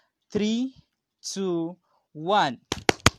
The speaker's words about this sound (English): I'll count to 3, and once we're done, you would clap your hand so loud, okay? And when you're done clapping your hand, you shout a big yes, okay? So you clap your hands 10 times, very fast, very loud, and you shout yes, okay?